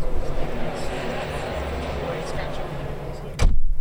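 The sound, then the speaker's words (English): Loud, dense crowd chatter of many people fills a large exhibition hall at the Business Design Centre in Angel, heard through an opened booth door; then a single heavy door thud as the booth door closes near the end, and the din abruptly drops to a muffled hush. “I'm going to open the door so you hear the sound difference.”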